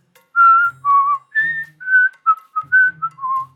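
Someone whistles a short, bouncy tune of about ten clear notes, rising and falling in pitch, fairly loud, with no talking over it.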